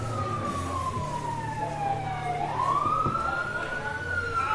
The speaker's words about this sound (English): Fire engine. There you go, folks. That's what a Queensland fire engine sounds like. In case you're wondering.